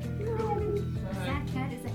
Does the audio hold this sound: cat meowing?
yes